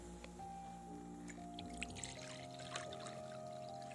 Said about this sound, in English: Also, I'm gonna pour some water into this.